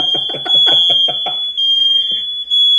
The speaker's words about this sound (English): There's nothing going on. Okay. There's literally no smoke in the air. The fire alarms are going off.